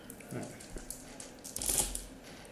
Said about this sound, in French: Voilà, donc je relance les dés.